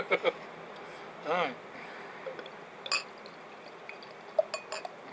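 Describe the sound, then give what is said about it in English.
Beer from the Volatile brewery is poured from a bottle into a glass outdoors shortly before sunset on a cold evening, with a short gurgling burst and several light glass clinks over a steady background hiss. “Get this off into my glass and see what I think. Almost had a bottle cap in my glass then.”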